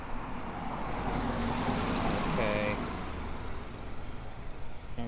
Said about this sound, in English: This is the problem when you're waiting for it. Okay, there's a car coming.